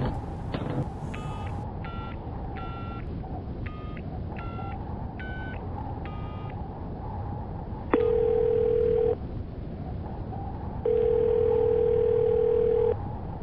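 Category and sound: signal or alarm, phone call ringing unanswered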